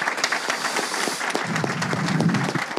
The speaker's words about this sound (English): Let's thank these guys. How about it? Give them a round of applause.